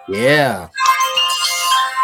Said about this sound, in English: Oh, somebody's phone going off.